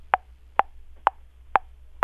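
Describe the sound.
A chipmunk's chunk alarm call: five low, hollow, clucking notes repeated at a steady pace, about two per second, each short and clear over a quiet background with no talking.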